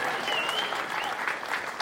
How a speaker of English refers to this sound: I know it's a little cheesy to say, but we're here to celebrate Jesus. So if you're going to give him a round of applause, do it with everything in you. Come on.